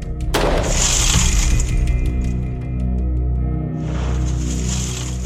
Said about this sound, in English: All right, range is hot. We had Officer Branion shoot the door again.